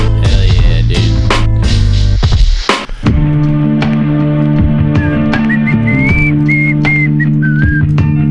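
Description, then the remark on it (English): A loud music beat with heavy bass plays, briefly drops out, then a person whistles a short, wavering melody over it in the second half, sitting clearly above the beat. “Whistle thing over this beat.”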